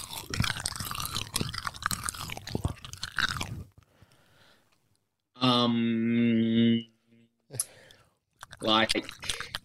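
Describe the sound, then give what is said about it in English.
Loud, wet chewing of Skittles candy, busy and crackly for a few seconds, then a pause, a short sustained hummed vocal tone, and a few more chewing bursts. “Like, I'm eating Skittles.”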